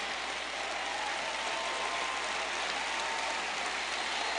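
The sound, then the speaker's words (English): Steady applause from an audience, a dense, continuous wash of many hands clapping at even loudness throughout, with no voices standing out. “I appreciate your claps.”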